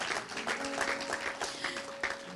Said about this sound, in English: If you believe it this morning, I want you to just clap your hands.